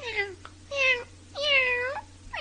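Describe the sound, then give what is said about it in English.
A voice imitates a cat meowing as Neoki, a cat character in Curious George: four high, harmonic mews in a row with short gaps between, clear, the last one cut off at the end. “And he's all like, and then in Curious George, I'm Neoki, this cute little cat who just meows a lot.”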